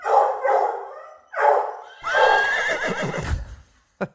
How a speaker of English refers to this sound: I remember when he first barked, I was like, I don't know to do about that. Because he's such a quiet dog.